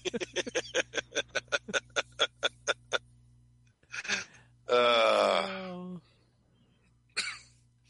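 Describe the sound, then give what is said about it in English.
A rapid run of sharp clicks gives way to breathy huffs, then a baby lets out a loud, drawn-out whining cry that slides downward, followed by a brief fussy burst. “I know, we all had to stop and coo at the little infant.”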